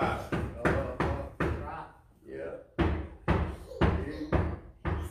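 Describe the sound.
Loud knocking, like a fist rapping on a door: a quick series of sharp knocks, a short pause with a brief voice sound, then another rhythmic run of knocks.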